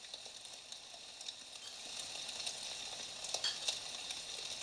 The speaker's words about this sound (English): Might be some weed in there. Take a sniff. That's not what weed. That's what weed sounds like, right? Yep, like tiny rocks. Like tiny rocks indeed.